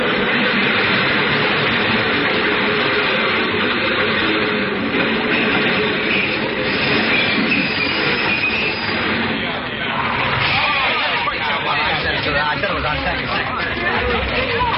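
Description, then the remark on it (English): A subway train rumbles in through a tunnel with a steady, loud roar and faint metallic squeals, while a crowd murmurs indistinctly in the background throughout. “But what I really wanted to do was to throw myself in front of that train.”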